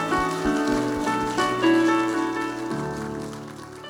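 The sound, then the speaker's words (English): An audience gives a clap offering to the Lord, clapping steadily in a dense, crackling wash of applause that holds for the full few seconds, layered over sustained, harmonically rich music playing underneath. “Let's give a clap offering to the Lord, please.”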